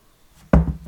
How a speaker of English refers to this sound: I have another little slurp.